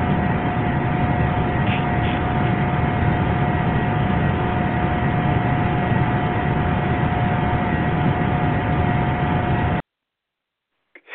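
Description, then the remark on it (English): A new heat pump heating a bedroom runs with a steady rushing, airy roar, like wind through metal, carrying a constant thin, high-pitched vibrating whine. It holds unchanged for about ten seconds before cutting off abruptly into silence. “You can barely hear it there, but it sounds like wind going through metal and it's vibrating. Real high pitch like that.”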